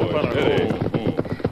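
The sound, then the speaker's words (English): Several horses' hooves clip-clop in a quick, uneven rhythm as the Lone Ranger, Tonto and Dan Reed, riding north toward the Bighorn country, rein up their horses on a hillside trail, with a faint voiced murmur over the first half second. “The Lone Ranger, Tonto, and Dan Reed, riding north toward the Bighorn country, reined up their horses on a hillside trail.”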